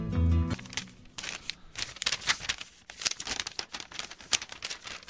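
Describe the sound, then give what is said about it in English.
Paper is crumpled into a ball with dense, irregular crackling and crinkling bursts that continue for several seconds, fairly loud, after a brief tonal sound at the start. “You've created a meteorite. A beautiful, beautiful meteorite made out of paper.”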